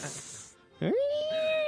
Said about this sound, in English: I remember that one because I was drunk and tormenting my cat, shoving his face into the microphone and putting a delay on it.